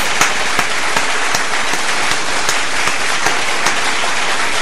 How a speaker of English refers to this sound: Claps, they just go long.